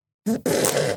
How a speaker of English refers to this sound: If it is objectively funny, which I think farting is objectively funny, then I'm jaded to this. I don't laugh. That fart did not even make me smile.